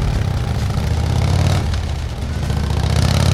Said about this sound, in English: The gang members got on their motorcycles and started driving off even before the earthquake stopped shaking everything.